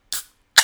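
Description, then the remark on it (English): A large, double-size can of Chuhai is popped open: two quick, sharp bursts, a crack and then a fizzing hiss, with a short pause between them and no talking. “Okay, here we go. I'm popping this Chuhai.”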